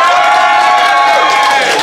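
A crowd applauds loudly and steadily, with cheers and whoops mixed into the clapping, filling the whole short stretch without a break.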